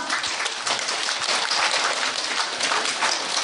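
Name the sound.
audience clapping hands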